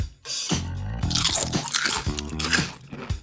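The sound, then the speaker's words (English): Loud crunching as a crispy chip is bitten and chewed, a dense run of sharp crackly bursts lasting a few seconds with no talking. “Crispy. Yeah, oh, it's crispy, all right, and kind of weird.”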